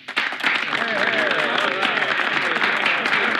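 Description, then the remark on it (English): A platoon gives a steady round of applause that fills the whole stretch, dense, with excited voices cheering and whooping through the clapping. “I think that we owe a big round of applause to our newest, bestest buddy and big toe, Sergeant Hulka.”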